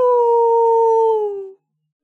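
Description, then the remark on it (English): A voice imitates a single long howl, like one heard at night from a riverbank by someone passing on a boat: a steady, clear, mid-pitched tone held for about a second and a half, then sliding slightly downward as it fades out, with no other sounds. “There was some howling, some snarling on the bank that you can hear so far.”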